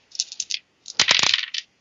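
Dice rattle and clatter across a hard table in two quick bursts: a light run of small clicks, then a louder tumble of hard knocks that skitters to a stop. No voices.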